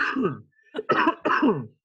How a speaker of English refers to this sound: So sorry, I'm about to cough here.